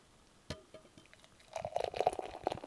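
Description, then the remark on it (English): A sharp click, then beer pours into a tulip glass: a gurgling, fizzy rush that swells about halfway through and keeps splashing steadily to the end, with no voices. “Listen to that. That's a nice pour.”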